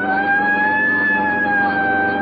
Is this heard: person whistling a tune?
no